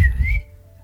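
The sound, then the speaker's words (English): A single short, sharp whistle from a person calling a dog named Shadow, rising slightly in pitch before cutting off quickly, over a low background rumble. “You whistle, and Shadow comes.”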